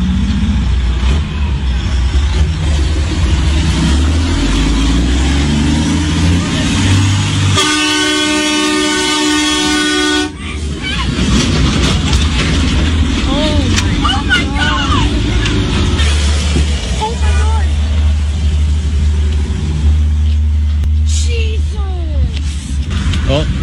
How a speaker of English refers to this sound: Here we have the truck approaching, where approximately 300 animals are stacked into this truck. We're gonna stop this truck so we can bear witness.